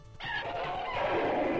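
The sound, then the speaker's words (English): A sudden clatter as Laurel Hardy falls over his crate of chickens, followed by a dense burst of chickens squawking and flapping, loud and continuous for about a second and a half with no talking. “That was definitely Laurel Hardy falling over his crate of chickens.”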